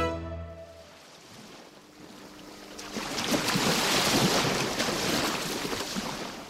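Atlantic Ocean waves wash against the coast of Ibino, a fishing village in southeast Nigeria, a broad hiss of surf that swells louder halfway through and stays rolling, with wind rumbling underneath and no voices.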